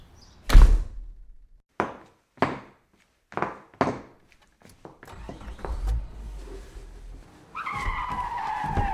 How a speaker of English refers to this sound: it looks like your date just sped off. What do you mean? He just ran to his car and made a run for it.